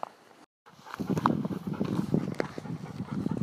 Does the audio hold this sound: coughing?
no